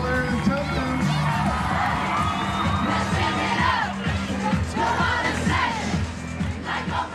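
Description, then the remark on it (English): A large crowd cheers and shouts steadily for several seconds as camogie players enter and process up to the stage, a loud, dense roar of many overlapping voices with scattered whoops rising above it and a low hum underneath. “Then the Camogues come in and the crowd parts as they process up to the stage.”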